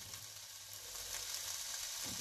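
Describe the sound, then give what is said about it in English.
Vegetables seasoned with smoked paprika sizzle steadily in a hot frying pan, a dense crackling hiss that stays even for a couple of seconds, with a faint low hum underneath and no talking. “You hear the sizzle.”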